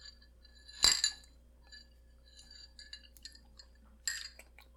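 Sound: glasses clinking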